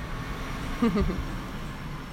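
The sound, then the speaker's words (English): A car passes by outside with a steady low rumble and a brief, slightly louder swell about midway, set against constant background hiss. No one speaks. “I mean, at night cars still pass as well”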